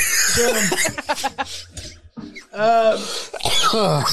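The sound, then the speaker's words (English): Loud fits of coughing and throat clearing come in bursts, some breaking into strained, laugh-like vocal sounds, with brief pauses between the rough spasms. “Don't do that to me when I got a cough, man.”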